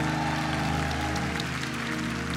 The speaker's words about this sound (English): But he humbles himself to serve and to bless the people of the Lord on this day. Give him another rousing applause.